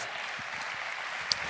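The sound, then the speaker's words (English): A steady wash of audience applause, many hands clapping at once in a dense, even patter with no pauses, moderately loud and with no voices over it. “Give a little round of applause today.”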